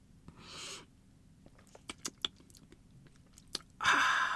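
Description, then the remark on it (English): A slurping sip of a cocktail with a red wine float, taken as a deep pull, followed by several wet swallowing clicks and gulps, ending in a breathy exhale. The mouth sounds are fairly quiet, with no talking. “So you got to take a deep pull every time you drink from this cocktail. And excuse me while I do that.”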